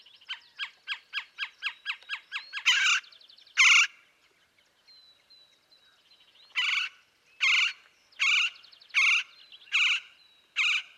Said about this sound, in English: Well, in the Sonoran Desert, there's also a bird called the Gila woodpecker, Melanerpes europygialis. It's got a tan-colored head and underside and bold black and white barring on the back and wings. Males have a red patch on the crown.